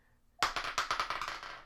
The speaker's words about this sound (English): Now I'm rolling with the Fire Sprite die from Die Hard Dice.